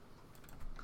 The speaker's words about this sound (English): Yeah, we don't also check it, so you know. Right? You hear me typing right now to check it? Yep, that's what you're doing.